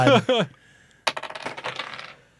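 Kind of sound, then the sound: household object, dice rolling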